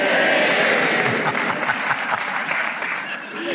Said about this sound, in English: Okay, I'll do them one by one, and you give a little cheer to the one you like the most.